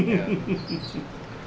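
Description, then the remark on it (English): A mother bird sitting on her nest chirps in short, high, squeaky bursts over a low murmuring background that sounds like muffled voices. “it's this mama bird who's been sitting on her nest for longer than it seems like she should reasonably have.”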